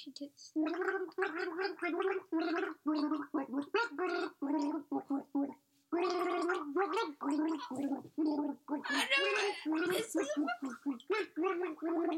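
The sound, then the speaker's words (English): A woman gargles water in a steady, bubbling stream as a guessing game, the pitch rising and falling to the tune of a popular song, fairly loud, with a short pause midway before the gurgling melody resumes. “Gargle”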